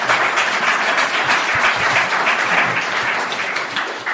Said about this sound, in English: Okay, thank you very much. Can I have a round of applause for the speaker?